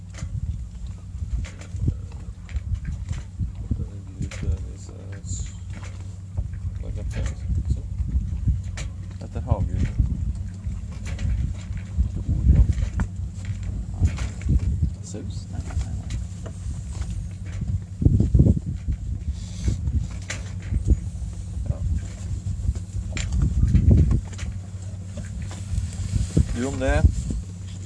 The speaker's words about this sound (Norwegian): Så nå står vi altså midt ute I Drøbaksundet og driver bortover, uten motor, fordi vi har skrudd den av.